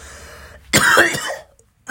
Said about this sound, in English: Guys, I'm so sorry you have to hear that cough. That's so loud.